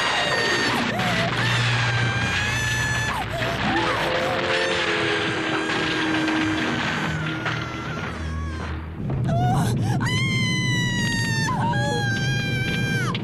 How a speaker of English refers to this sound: When they throw it over the side, the ADR of her screaming as it's tumbling is amazing.